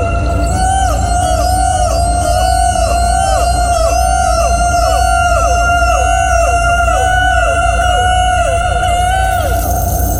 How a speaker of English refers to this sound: The Deadeye Boy unleashes a high-pitched scream, and they all start to repeat it, all of them raising the alarm, passing across the candy factory floor.